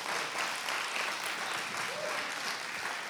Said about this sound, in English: God has done, yeah, let's give God a clap.